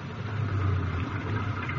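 A car engine idles steadily, a continuous low rumbling hum with no changes in pitch and no voices.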